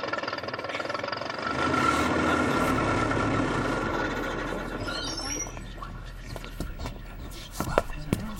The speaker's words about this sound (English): I stood next to an evil-looking fellow and was greatly relieved to see the bus arriving a few minutes early.